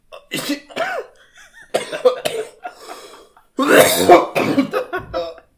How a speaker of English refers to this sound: That was actually me gagging, not coughing. Oh, okay. Dude, you really just made me gag.